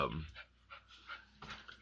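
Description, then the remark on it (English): A female dog pants in quick, rhythmic breaths, a steady string of soft huffing bursts repeating several times a second at a fairly low volume. “you can hear her breathing.”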